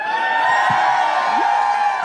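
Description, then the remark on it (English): A crowd cheers and whoops steadily, a dense wash of many voices holding a constant loud level for the whole stretch, with no single speaker standing out. “You didn't have to cheer, but, you know, it makes some noise.”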